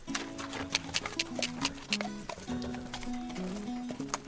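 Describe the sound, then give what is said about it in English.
A rescue racehorse's hooves clip-clop in a quick, steady rhythm, crisp, over a continuous melodic tone running underneath. “this rescue horse called Rollo that costs 200 euros is a racehorse”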